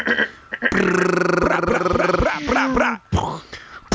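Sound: dog growling and barking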